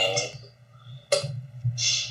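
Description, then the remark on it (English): A quiz countdown clock ticks with 20 seconds on the clock, one sharp click standing out above a steady low hum, and softer ticking sounds around it. “20 seconds is on the clock.”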